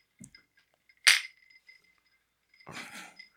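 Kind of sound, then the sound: household object, glasses clinking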